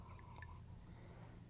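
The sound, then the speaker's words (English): A quiet sip of tea, with soft wet slurping and a few tiny liquid drips over a low steady background hum, no one speaking. “Okay, let me get a sip of tea.”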